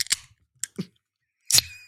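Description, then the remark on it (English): A beer can cracking open: a few sharp metallic clicks, then a louder snap of the tab followed by a short fizzing hiss, with no voices. “Oh, by the way, I was told that burps and beer cracks make people uncomfortable.”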